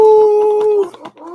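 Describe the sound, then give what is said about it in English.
A human voice imitates a wolf howl, holding one loud, steady note for most of a second before breaking off into brief, rougher vocal sounds, with faint voices and noise behind it. “Holding down that Wolf Pack.”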